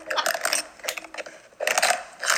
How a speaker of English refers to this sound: Audible stimulation. Really? I am not stimulated. She was chewing chips.